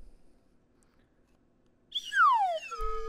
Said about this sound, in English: And that is the emergency slide whistle. It's emergency only, okay? I'm going to play it just once so you get the idea of what the emergency slide whistle does, okay?